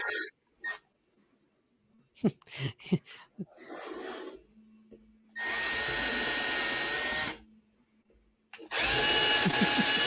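A power drill whirs loudly in two sustained bursts of a few seconds each, pre-drilling holes for putting in the top, after some brief knocks and handling sounds.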